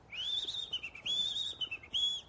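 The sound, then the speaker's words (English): A small bird sings from a lower branch of a tree: three bright, high-pitched whistled phrases, each gliding and warbling slightly before breaking off, with short pauses between them and a faint hiss underneath. “And the little bird flew down to a lower branch, and it sang to the man again.”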